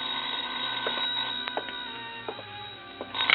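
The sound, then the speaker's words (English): An old-fashioned telephone bell rings steadily, a continuous metallic trill with a few sharp clicks, heard on its own with no voices, slightly thin and muffled in tone. “I was about to go downstairs when the phone rang.”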